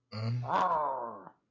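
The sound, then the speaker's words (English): A person growls for about a second, starting as a low, rough rumble and rising into a strained, harmonic groan before trailing off, with no words spoken. “I was growling like, Powell needs to go.”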